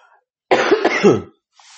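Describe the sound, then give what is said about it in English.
A single harsh cough burst lasting under a second, with a raspy throaty texture, surrounded by near silence and a faint breath afterward. “Hold on, let me cough real quick.”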